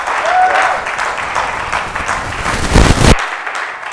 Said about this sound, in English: When someone is clapping, I think it's a good thing to join the clapping.